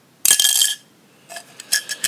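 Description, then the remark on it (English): A pin drops into an empty glass with a bright, ringing clink, followed by several softer, quicker tinkles as it bounces and settles. Clear, with no voices. “It was a pin dropping in.”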